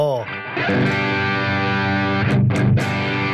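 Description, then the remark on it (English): An electric guitar played through a low-gain tube drive pedal with all knobs at noon plays a sustained chord with a mild, gritty overdrive, ringing steadily for a few seconds before a couple of quick strums near the end, fairly loud. “So this isn't like a wild high gain pedal or anything, but basically you juice the volume a little bit.”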